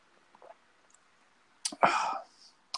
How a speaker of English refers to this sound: Let me get a little sip of this beer real quick before I start talking about it.